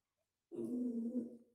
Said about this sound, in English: Here's the fun part. There are dogs fighting. Not again, gang.